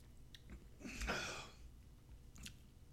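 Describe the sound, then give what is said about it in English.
A shot of Malort liquor being drunk: one quick, soft slurp and swallow swelling into a breathy exhale, with a few faint mouth clicks on either side and no talking. “Well, I guess without further delay, seeing as I picked fewer winners, I'm going to drink the Malort. I got it poured here.”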